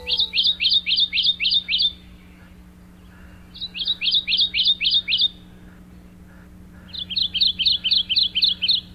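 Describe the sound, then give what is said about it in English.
A Kentucky warbler sings three loud, clear phrases, each a rapid series of about six rolling two-note whistles, with short pauses between them over a faint steady background hum. “Despite its striking color pattern, it's a bird that's more often heard than seen, singing like this.”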